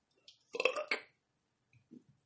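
burp

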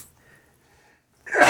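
sneeze

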